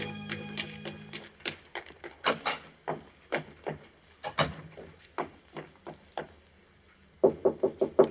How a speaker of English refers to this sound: It was clear to me that she was disturbed about something, so I knew she would want to see me. I waited for her knock.